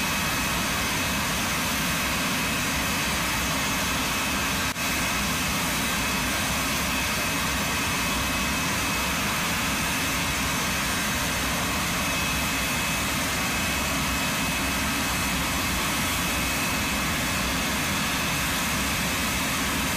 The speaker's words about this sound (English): And it's regarding a certain L39 Albatross jet.